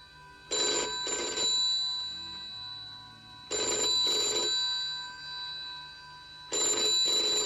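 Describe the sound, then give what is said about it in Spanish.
A telephone bell rings in repeated double bursts, three rings spaced about three seconds apart, loud with a bright metallic trill and short quiet gaps between them. “El timbre seguía sonando imperioso, terco.”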